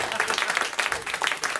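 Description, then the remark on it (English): An audience applauding steadily, a dense wash of many hands clapping at once, moderately loud, with no clear gaps across the brief stretch. “You should just clap. That's all you need to do, really.”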